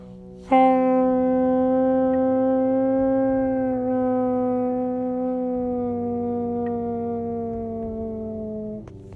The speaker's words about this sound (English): Howl. But I don't howl. The best I can manage was a howl, howl, howl